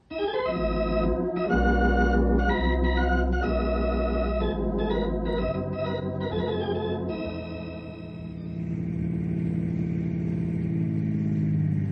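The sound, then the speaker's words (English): A car engine hums loudly and steadily as the vehicle drives along, its pitch shifting with a few gear changes before settling into a smoother, lower cruising drone. No one speaks. “Let's get in the car.”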